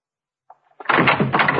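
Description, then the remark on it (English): A door opens as someone comes in: a faint click, then a loud, rough rattling sweep that lasts under a second, with no voices. “Somebody's by the door.”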